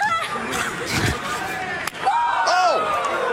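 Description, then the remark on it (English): A single sharp slap on the chest in a wrestling match cracks out once, loud, over a steady wash of crowd noise and excited voices talking throughout. “A titty slap.”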